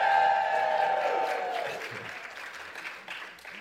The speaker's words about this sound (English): How about that, eh? All that. Oh, still cheering as well. Come on, guys. Thank you very much. Thanks, everybody.